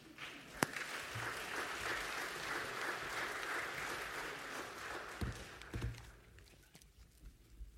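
A crowd claps steadily for several seconds, a dense patter of many hands that gradually thins and fades out near the end, with a few sharp louder claps standing out.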